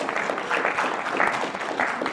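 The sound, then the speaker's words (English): A crowd at a mosque gathering applauding steadily, dense overlapping claps forming a continuous, fairly loud wash of sound with slight swells, no voices standing out. “On behalf of the mosque, I want to give all of you a big round of applause for coming over here.”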